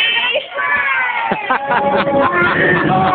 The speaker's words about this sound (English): Yell at the top of your lungs with all your friends. Okay. Are y'all ready?